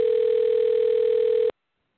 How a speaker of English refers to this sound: your phone's ringing.